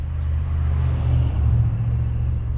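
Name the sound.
bus engine rumbling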